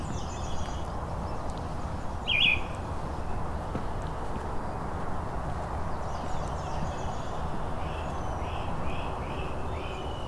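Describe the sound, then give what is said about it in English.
A great crested flycatcher gives a single loud, clear call near the start, standing out over a steady outdoor hiss, with fainter songbird notes repeating in the background afterward. “There's a great crested flycatcher.”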